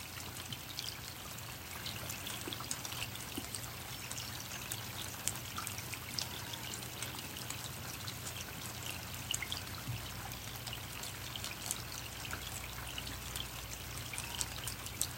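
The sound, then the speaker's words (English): Water trickles gently and continuously into water, a soft steady stream with fine splashing detail, heard alone at a quiet, even level over a faint low hum. “Feel into the gentleness of water meeting water.”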